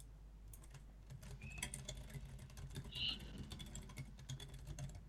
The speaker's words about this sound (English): Sorry, I'm typing messages to someone at the same time as well. Yeah, good job. They sound like raging pissed messages. No, I'm just a fast typer. It kind of always sounds like that.